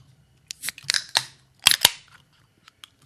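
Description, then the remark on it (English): Several seltzer cans in mango, lemon lime and black cherry flavors crack open one after another, each a sharp metallic pop followed by a brief bright fizz of escaping carbonation, with a low steady hum underneath and no talking. “So I got some for you guys to try, so let's crack them open.”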